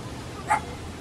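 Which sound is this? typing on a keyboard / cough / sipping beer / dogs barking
dogs barking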